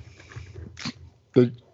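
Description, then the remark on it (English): A single sharp sneeze bursts out, preceded by a shorter breathy intake, with a low murmur of voices in the background. “Bless you.”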